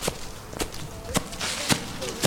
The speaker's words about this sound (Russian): Вот мы нагулялись в лесу, наскакались, нарезвились, устали и идем домой. Идем домой, идем домой, идем, шагаем мы.